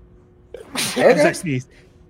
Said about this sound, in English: As I sneeze.